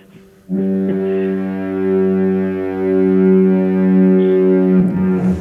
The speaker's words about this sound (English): Duluth double foghorn, please.